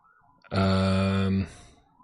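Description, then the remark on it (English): A loud emergency siren blares as a single steady, buzzy tone lasting about a second, then cuts off, leaving faint background noise. “The siren's going crazy over here.”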